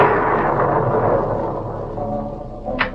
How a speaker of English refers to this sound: I heard the front door. Someone just came in.